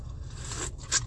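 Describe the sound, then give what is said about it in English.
A quick slurp from a drink: two short, hissy sucking bursts, the second a little louder, over a steady low hum with no talking. “I just need to wet my whistle, and I had to slurp, so I'm very sorry about that.”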